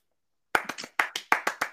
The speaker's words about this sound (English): I just want to give a round of applause to the queen.